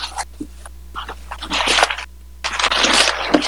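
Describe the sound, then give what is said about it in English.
Scissors cut open plastic packaging: a few quick snips, then two longer rasping, crinkly cuts separated by a brief pause. No voices. “So it's the scissors, like, cutting. Chop, chop, chop.”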